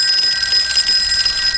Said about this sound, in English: mine was, you answer me even though I asked you no questions. What am I? Sounds like it would be a phone.